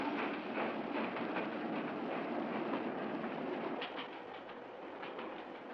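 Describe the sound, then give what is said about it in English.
A steam train rolls along the rails with a steady, dense rumble and rattle that continues throughout, easing slightly near the end, with no voices. “Stop the train! It's Moriarty himself.”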